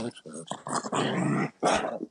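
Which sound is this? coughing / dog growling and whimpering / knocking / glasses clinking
dog growling and whimpering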